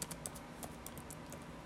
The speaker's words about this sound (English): Sorry, I'm just typing it in.